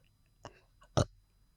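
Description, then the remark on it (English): A woman burps on command by swallowing air and letting it out: a short, faint guttural sound is followed by a louder, rougher burp about half a second later, with no talking. “Yeah, that's burping on command.”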